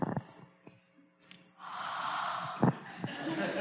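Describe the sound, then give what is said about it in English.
A person blows out a long, forceful breath into the microphone, a breathy rush of air that swells and holds for a couple of seconds after a few short puffs, imitating Jesus breathing on his followers. “So that's Jesus breathing on them.”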